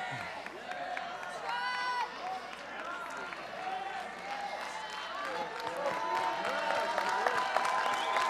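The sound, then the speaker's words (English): An audience claps and cheers continuously, a dense wash of applause carrying scattered shouts and high whoops, holding steady and swelling slightly louder toward the end. “Some of you not clapping, I don't know whether you believe this or not, but I'm telling you in this house, I believe that there is one God.”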